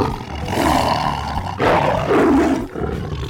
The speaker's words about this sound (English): So as I went through my recordings, I just kept falling back on the Tiger recordings, which had so much more venom in them.